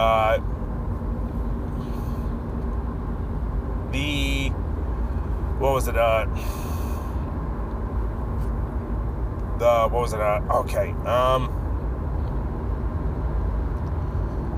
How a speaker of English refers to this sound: That was the first car action sequence.